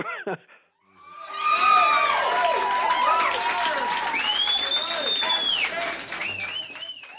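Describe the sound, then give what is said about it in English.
A dense, sustained wall of high-pitched screams and shrieks from a concert audience at the Cellar Door, heard on a live album, many voices wailing and whooping at once, loud and unbroken after a brief voice at the start. “One of the things that a lot of people complain about the album, they say they love the actual songs and the tracks, but they, you know, they don't like the screaming and it's too much for them.”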